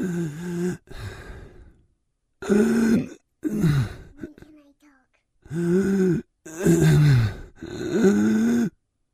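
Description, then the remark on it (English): A man imitates heavy, painful breathing in loud, drawn-out rasping breaths and groans, about six bursts separated by short pauses, with no other sound. “I have to do the breathing. Let me do the breathing.”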